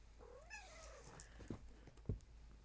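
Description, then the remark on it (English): A cat gives a single drawn-out meow, rising then falling in pitch, fairly soft, followed by a couple of faint thumps and rustles. “Meow. You gonna say hi?”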